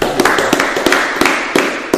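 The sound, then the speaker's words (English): Hands clapping in a loose, uneven patter, sharp slaps overlapping as if from a few people at once, steady and fairly loud for about two seconds with no talking. “Hey, man, let's clap it up for us, man.”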